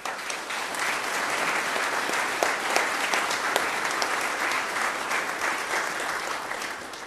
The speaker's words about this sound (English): I ask you to give the children some applause.